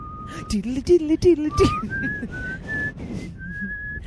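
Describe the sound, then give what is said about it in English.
A person whistles a short, eerie theme melody, the X-Files theme, as a ringtone, with long held notes stepping higher, while voices talk and laugh underneath during the opening seconds. “It's hard for me to hit that high note.”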